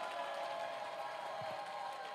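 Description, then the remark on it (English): An audience claps their hands together, a steady, dense wash of many overlapping claps at a fairly soft level, with no voices over it. “Clap your hands and let's receive our Father.”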